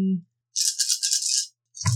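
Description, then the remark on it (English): About a second of nine dice rattling and clattering together in a bright, busy burst, as they are rolled for an investigation check in a tabletop game, with brief bits of voice just before and after. “And I can only roll 9 dice now, right?”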